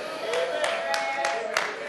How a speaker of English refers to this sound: Well, you didn't clap your hands too loud on that, but it's the truth anyhow.